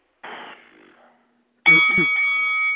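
A brief noisy burst, then a loud bell rings out sharply and keeps sounding with a steady, sustained tone until the end, close and prominent.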